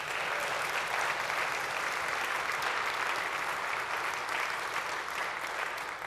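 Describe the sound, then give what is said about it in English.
Sustained audience applause for the children who performed on stage, a dense steady wash of many hands clapping at even loudness for several seconds, with no voices standing out above it. “They're still in the room, so we can give them a round of applause as well.”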